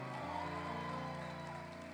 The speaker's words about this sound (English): Come on, y'all. Don't stop clapping until they join me, until they meet me here. Yep, don't stop until they meet me. Come on, come on. Keep clapping until they come. Yep, let's keep on clapping.